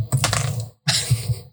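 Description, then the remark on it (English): Dice thrown at a computer clatter and rattle in two quick bursts, a sharp jumble of small hard clicks against a bowl and keyboard keys, fairly loud, with a brief pause between them and no talking. “I like hearing the dice roll over the place.”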